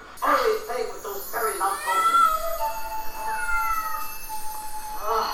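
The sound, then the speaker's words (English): A cat meows in a few drawn-out, wavering cries that rise and fall in pitch, clear, following a brief burst of voices at the start. “Do not tell me he just fell in love with a cat.”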